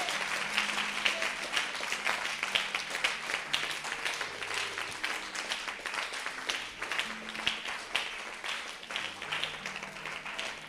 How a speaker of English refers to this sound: Somebody give him a clap offering today. Give him a clap offering today.